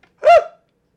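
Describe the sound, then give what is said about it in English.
A single quick, loud sneeze with a sharp voiced burst that fades within half a second, surrounded by silence and no talking. “Bless you.”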